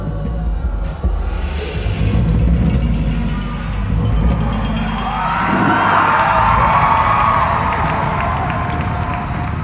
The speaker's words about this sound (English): So spoke the Lord of Men Agamemnon, anxiously awaiting the clamoring crowd's answer.